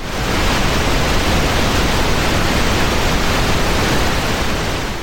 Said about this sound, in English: Okay, so let's listen to this next one. This next one is pink noise.